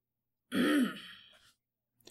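A single rough, throaty cough erupts from the darkness in a chill, damp place of worked stone and trails off over about a second, clear, with no talking, followed by a brief faint rustle.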